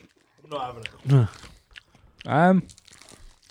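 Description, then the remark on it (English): Two crunchy bites into a honeycomb chocolate bar broken into four pieces, with chewing. Short voiced murmurs break in between the bites, and no clear words are spoken. “It does look like a crunchy. I broke it in four. This literally smells like a crunchy.”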